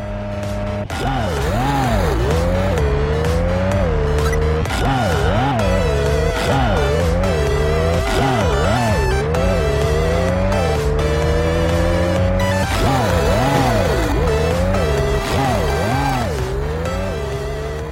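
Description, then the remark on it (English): Synthetic retro sounds from the racing video game Super Pixel Racers: a steady buzzy engine drone with repeated warbling, pitch-bending skid squeals sweeping up and down every second or so, loud and continuous with no voices. “Some great chip tune music, passable in-game effects, but a really bizarre skid sound”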